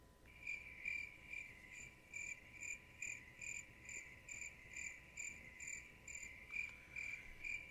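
Crickets chirp in a steady, rhythmic pulse of high trills repeating about twice a second, with no voices and only a faint background hiss.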